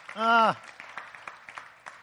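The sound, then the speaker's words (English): A church audience claps for the Lord at the end of a prayer, a loose, scattered burst of sharp claps that follows a single sustained voiced cry at the start, with light murmuring underneath. “Will you give the Lord a hand clap?”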